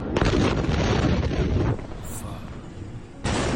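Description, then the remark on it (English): A huge explosion at a burning warehouse containing fireworks, striking with a force of magnitude 3.5 roughly 30 seconds after a smaller explosion: a loud, dense rumbling blast that drops into a lower, lingering rumble before another heavy burst of noise hits at the end. “Videos from the scene suggest there was one smaller explosion. And then roughly 30 seconds later, this enormous shock.”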